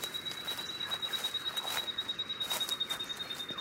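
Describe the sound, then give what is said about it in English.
Small birds hop around and tweet in a wet forest as the sun is about to come up, a rapid, steady run of high chirps over a constant thin whine, continuous throughout, with no one talking. “Ooh, there's some little birds hopping around and tweeting.”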